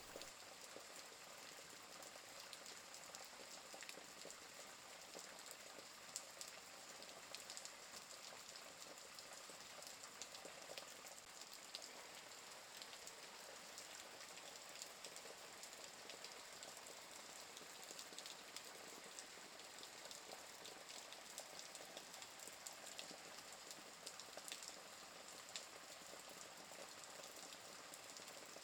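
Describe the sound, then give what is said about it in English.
Steady rain patters on sculpted streets and buildings, a dense, even hiss of countless drops with no pauses, continuing evenly throughout with no voices. “You hear the patter of the rain hitting the sculpted streets and buildings as you make your way down the path.”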